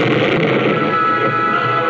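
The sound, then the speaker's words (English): A can of blasting powder, thrown among big boulders, explodes: a powerful roar for the whole stretch, a dense crackling rumble with no break or fade, loud and unaccompanied by any voices. “The can of blasting powder exploded among the big boulders, taking the gunmen completely by surprise.”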